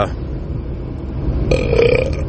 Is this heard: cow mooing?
no